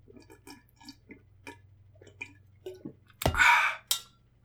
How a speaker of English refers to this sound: You guys ready for some water drinking ASMR? Let's do it, boys.